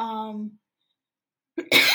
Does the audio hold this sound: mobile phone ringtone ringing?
no